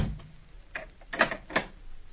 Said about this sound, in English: Close the door, Mac. And shoot the bolt.